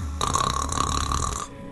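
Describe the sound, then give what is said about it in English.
A single drawn-out snore imitated by a voice, a rough buzzing rattle held for over a second, fairly loud, then cutting off into quiet. “That's how I want to spend the next 4 hours. Listening to the snores.”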